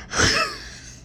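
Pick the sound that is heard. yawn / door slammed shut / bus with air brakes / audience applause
yawn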